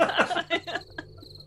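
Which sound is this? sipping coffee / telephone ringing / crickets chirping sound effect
crickets chirping sound effect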